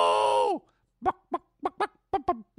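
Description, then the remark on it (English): Someone imitates a chicken: a drawn-out descending squawk, then a pause, and then seven short, choppy clucks in an uneven rhythm, moderately loud. “Chubby chicken!”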